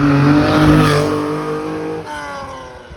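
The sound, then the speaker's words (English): A loud Lancia Stratos sports car with a Ferrari Dino V6 engine revs hard with rich harmonic tones, the pitch sweeping as it accelerates, then dropping back to a rougher, lower rumble near the end. “That's a Ferrari Dino V6.”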